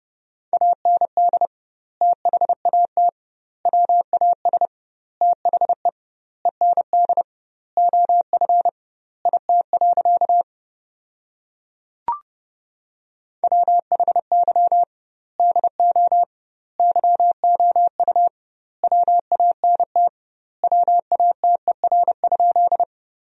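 Morse code at 30 words per minute with double word spacing, sending sentences built from the top 200 words: a steady mid-pitched tone keyed in rapid dots and dashes, grouped into words with short gaps, broken midway by a silent pause and a single click.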